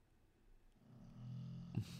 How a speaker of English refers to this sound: That's Rambo underneath the table snoring.